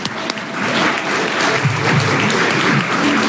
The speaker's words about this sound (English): I'm not going to call any names tonight, but I'm simply going to say, let's go ahead and give that person some applause in advance.